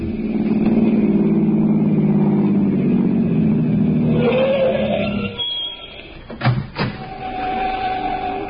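car engine driving away

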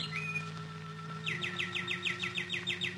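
birdsong

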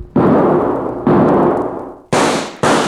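gunshots

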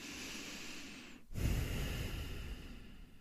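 a deep breath

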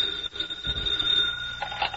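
telephone ringing

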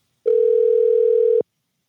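telephone dial tone

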